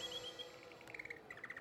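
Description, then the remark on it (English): Small birds tweet softly, a series of short, high chirps repeating quickly over a faint, steady background hum, with no voices. “You know the sound you want to hear at break of day. Tweet, tweet, tweet.”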